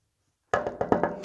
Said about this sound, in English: She knocks on wood.